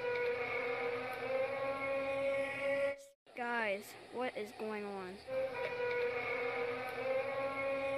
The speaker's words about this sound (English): The only thing I've ever heard something like that for, I mean, it sounds like trumpets. Right. It sounds like, you know, a storm alarm that you hear in the distance.